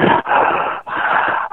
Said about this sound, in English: And that heavy breathing is not the guest.